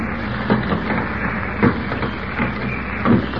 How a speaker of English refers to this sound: As we join them now, Kent is just opening the front door of the theater with a key he has somehow managed to obtain. Listen.